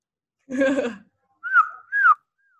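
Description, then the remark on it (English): A woman, a vocalist, imitates a bird call: a brief voiced burst, then two clear whistled chirps that bend in pitch and drop at the end, followed by a faint trailing whistle. “I can make bird noise like…”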